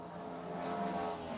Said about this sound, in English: Cross the line for the number 92 right in front of us. That is the Porsche of Kelly Moss Racing. That car was in the wars this morning.